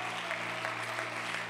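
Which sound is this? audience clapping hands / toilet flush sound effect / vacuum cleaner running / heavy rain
audience clapping hands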